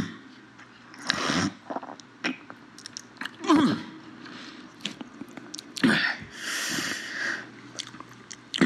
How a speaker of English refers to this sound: Just this week, the Biden campaign added this phlegmy snort from Bernie himself to their website.